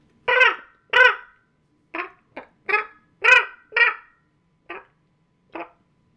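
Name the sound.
person imitating crow caws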